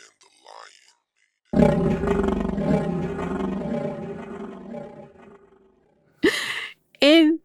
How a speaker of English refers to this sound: Probably going to be the roar. Oh my goodness. So you're just going to have multiple roars.